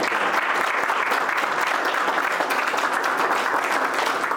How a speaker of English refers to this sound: Please, a round of applause for our elected officials.